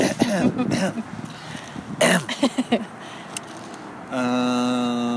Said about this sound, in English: Oh, clear your throat first.